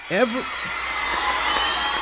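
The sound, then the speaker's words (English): The studio audience at The Ed Sullivan Show, all 700 seats filled, screams and cheers wildly as a band is introduced: one shrill, wavering scream rises above the crowd at the start, then a dense, steady roar of shrieking and cheering carries on. “and the crowd goes berserk, goes wild.”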